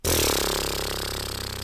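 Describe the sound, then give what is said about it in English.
A loud lip trill, a vocal warm-up exercise called the braying horse: lips buzzing in a steady, rumbling flutter on one long sighing breath that eases off slightly toward the end, with no talking. “And you just sigh out while buzzing your lips like this.”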